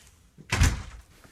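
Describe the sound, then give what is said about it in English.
A door slams shut once, loud, with a heavy low thud and a brief rattling decay that fades within half a second; no one speaks. “That last blow me door slam.”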